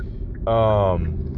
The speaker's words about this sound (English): If you can't tell by the beeping behind me, man, I'm turning up in the ride. So yeah, man, just over here trying to this to happen with the car.